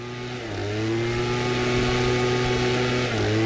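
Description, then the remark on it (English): A leaf blower engine runs steadily with a loud, droning mid-pitched hum, its pitch dipping briefly near the start and again toward the end before settling back. No one speaks. “But this is the blower.”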